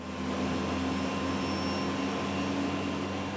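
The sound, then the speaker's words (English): Steady, loud roar of a Black Hawk helicopter flying over a 1 million-acre training area of public lands and mountain peaks in the Colorado mountains, heard from inside the cabin: a constant engine drone with a low rumble and humming tones, and no voices. “We're in a Black Hawk helicopter flying over HATS's 1 million-acre training area, which includes public lands and some of the state's 14ers.”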